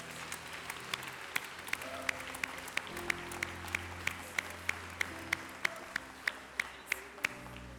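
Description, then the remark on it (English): An audience claps its hands in praise, crisp claps landing in a steady rhythmic beat over sustained low organ or keyboard chords, with a murmur of crowd noise underneath. “Give the Lord a hand clap of praise, if you will.”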